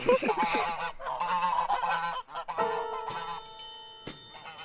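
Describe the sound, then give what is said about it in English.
Several geese kept as watchdogs honk in quick, harsh, nasal bursts, overlapping loudly for a couple of seconds; then bright, sustained ringing tones strike a few times as the honking fades. “By watchdogs, if somebody's coming, they just make tons of noise.”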